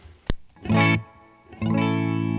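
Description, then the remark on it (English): A dry electric guitar signal with no effects through a Boogie California Tweed amp: a sharp pick click, a brief strummed chord that cuts off, then a chord left ringing, fairly loud, with no voices. “Here's our dry signal.”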